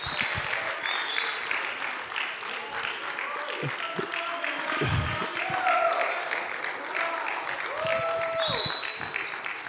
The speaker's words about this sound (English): So if our panel would come forward and they can take their places. Yeah, you can applaud.